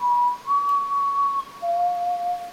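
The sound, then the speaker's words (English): A lone, clear whistled melody of a few long sustained notes, steady and slightly eerie, stepping between pitches with brief gaps, with no talking; the whistled intro of a band's song. “Yeah, the whistling.”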